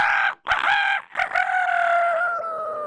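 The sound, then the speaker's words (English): A rooster crows loudly in the morning, a bright harmonic call broken into a few choppy opening notes before stretching into one long, sustained cry that slowly fades. “The rooster crowed.”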